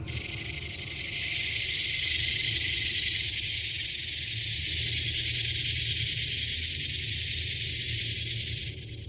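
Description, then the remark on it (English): A muffled chittering of dozens of creatures forms a dense, continuous high buzzing chorus, coming from a pulsating thing about the size of three or four adult elephants, holding steady for about nine seconds over a low rumble before cutting off abruptly. “It was pulsating, and I could hear a muffled chittering sound coming from its direction, similar to the one I heard in the woods.”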